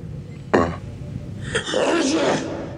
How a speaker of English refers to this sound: Klingon sneeze. I'm sorry. That's what it says in the Netflix getting sick captions.